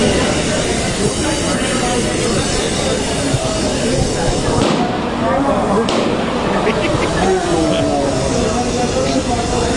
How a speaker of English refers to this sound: Here, listen to the balloons being filled. This is crazy. Our producer said there were hundreds of balloons being filled. Here it is.